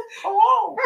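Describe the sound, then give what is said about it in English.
A dog gives one drawn-out, whiny vocalization lasting under a second, its pitch rising then sliding down before a brief upturn at the end, fairly loud, with no other sounds. “their favorite dog, is speaking”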